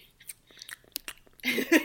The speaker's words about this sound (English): just don't want anybody chewing in my ear.